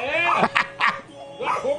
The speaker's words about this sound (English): They score, and the dog goes round and round and round, spins, barking. He loves it. Yep. That's a smart dog. He knows, celebrating the goal.